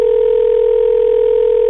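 A steady electronic telephone ringing tone hums without a break for under two seconds, loud and clear with no voices, then cuts off abruptly, introducing a listener's call-in MP3 message.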